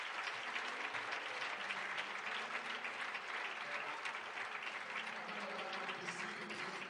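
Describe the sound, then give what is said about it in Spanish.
A crowd at a missions conference at the Iglesia del Calvario applauds God steadily and continuously for several seconds, a dense, even wash of many hands with no pauses and no one speaking over it. “¿Por qué no le damos un aplauso a Dios?”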